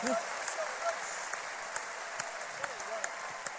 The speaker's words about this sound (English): Only seven people are clapping. Those who are clapping are going to heaven.